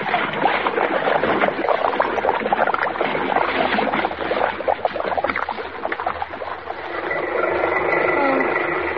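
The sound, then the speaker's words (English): A loud, continuous rush of churning, splashing water as a car crashes through a bridge rail into a lake and sinks, with a steadier gurgling wash toward the end. No one speaks. “Oh, she's crashed. She's going through the rail. She's in the lake.”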